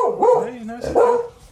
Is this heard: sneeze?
no